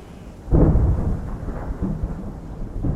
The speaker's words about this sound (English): And this time it is thunder.